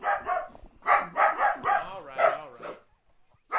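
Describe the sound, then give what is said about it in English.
Dogs bark in a quick series of sharp, loud barks with a few yelping notes, then go quiet briefly before one more bark at the end. “Do you guys even know what you're barking at?”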